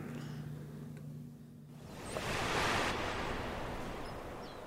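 A small wave washes in at the water's edge beside a prison, swelling into a soft broad hiss and slowly fading, after a few seconds of quiet water with a faint low hum at the start.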